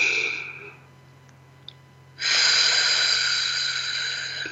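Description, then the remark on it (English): A deep breath during a guided breathing exercise, in through the nose and out through the mouth: an airy exhale trails off, a quiet pause follows, then a long, loud, rushing breath swells up and continues steadily to the end. No talking. “Let's take a breath together in through our nose.”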